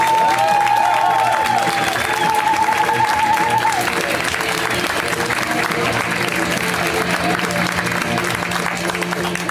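A show audience applauds steadily throughout as a guest comedian is welcomed, with dense clapping and some cheering, while a bright whistle-like tone rises and warbles over the first few seconds.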